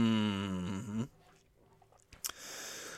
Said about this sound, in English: Take a sip of a nice cold Kirkland Signature sparkling water grapefruit.